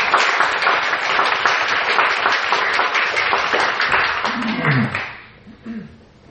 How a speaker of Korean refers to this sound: 효정문화센터를 위해서 애주신 분들을 위해서 큰 박수를 부탁합니다.